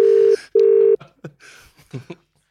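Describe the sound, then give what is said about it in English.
An outgoing phone call to a man's number rings: one clear double burst of a steady ringback tone, then brief muffled voice-like sounds. “This better not be one of these phone numbers that rings.”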